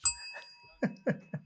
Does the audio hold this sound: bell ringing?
yes